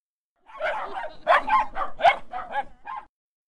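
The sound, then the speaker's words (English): A dog barks in a quick run of about seven sharp, yappy barks over roughly two and a half seconds, fairly loud, with no one talking. “I don't mind dogs.”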